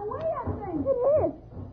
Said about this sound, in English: Growls are getting fainter.